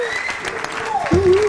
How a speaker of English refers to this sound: Woo! Thank you. It's nice to get applause just for being you.